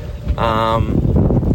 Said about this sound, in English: It's less windy than it was an hour ago. Yeah. But it's still really windy.